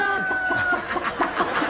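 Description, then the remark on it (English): A bird clucks and squawks in a quick, steady run of about eight short, raspy bursts, fairly loud, with a faint thin whistle-like tone underneath at the start. “It is a goody-toddy bird, the only bird that keeps score.”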